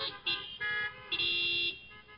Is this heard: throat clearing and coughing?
no